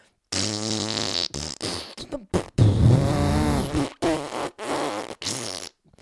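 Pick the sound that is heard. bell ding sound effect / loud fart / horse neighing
loud fart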